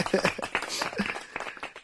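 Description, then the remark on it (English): A short burst of hand clapping, a quick, irregular run of sharp claps at moderate loudness that lasts about two seconds, with no clear speech over it. “Let's clap it up for that.”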